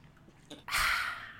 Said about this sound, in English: I don't know what's happening with my voice, by the way. Let me just drink some water.